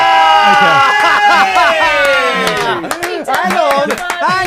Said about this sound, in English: I'm going to flick through the pack. You'll hear this one. Okay, I'm going to flick through the corner of the pack.